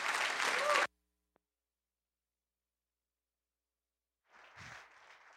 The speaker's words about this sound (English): Give him a big hand of applause.